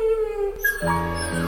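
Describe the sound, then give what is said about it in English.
A dog howls and whimpers in a short, drawn-out wail that shifts pitch partway through. The sound is fairly loud, with no talking. “the missing dog. Yeah, the missing dog.”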